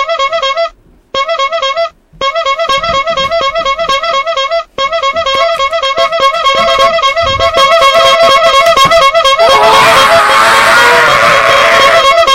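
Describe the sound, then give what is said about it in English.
Loud clown horn honks squeeze out in rapid, repeated bursts, a few separate blasts at first, then a nonstop flurry that grows harsher and more chaotic toward the end. “honk if something dumb has happened in MMA today.”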